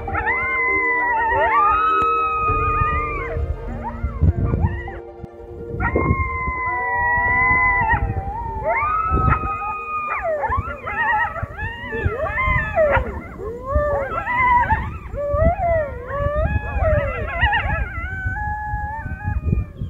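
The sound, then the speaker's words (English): A chorus of coyotes howls and yips, long wavering howls at first breaking into a frantic overlapping jumble of yelps and barks, loud with no talking. “In general, coyotes are just very flexible.”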